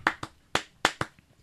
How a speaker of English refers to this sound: Let's make a clap.